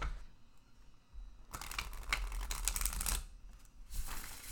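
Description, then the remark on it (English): A new deck of tarot cards is shuffled for the first time to check its cardstock quality, giving two bursts of rapid, crisp riffling and flicking separated by a short pause, with no one speaking. “Let me go ahead and give it its inaugural shuffle so that I can just confirm the cardstock quality here.”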